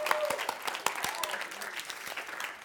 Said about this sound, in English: But can we just give a round of applause to this SE Spiritual Emphasis team for putting it together? An amazing camp. Woo!